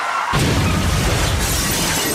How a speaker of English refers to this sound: A car accident.